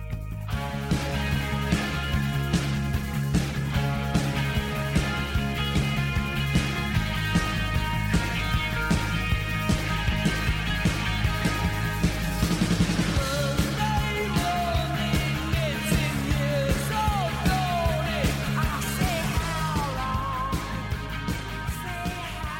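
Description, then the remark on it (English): A rock song plays at full volume with a steady, driving drumbeat, thick bass and layered guitars, a melodic lead line weaving in near the end, with no talking over it. “Was … from 1980s …. Yeah. This is amazing tune.”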